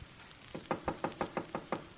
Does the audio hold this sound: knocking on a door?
yes